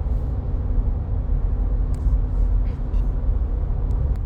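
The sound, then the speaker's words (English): Steady low road rumble from inside a moving car in traffic after dark, with engine drone and faint intermittent squeaks or clicks over the continuous hum. “Okay, we just had to stop because things were getting a little out of control and then traffic and then it's dark outside now and are both of those cars changing lanes at the same time?”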